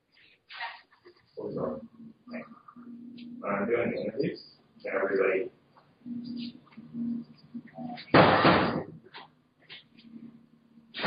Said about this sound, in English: And hold on one second. Let me close this door. I have all my assistants here talking.